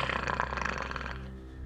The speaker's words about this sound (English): What's Luna doing? Luna is still growling at the door.